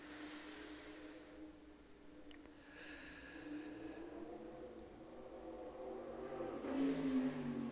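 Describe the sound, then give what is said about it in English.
A motorcycle engine drones steadily, its low hum holding for several seconds before revving up and growing louder near the end; no one speaks. “For me, it's a motorcycle, maybe a barking dog.”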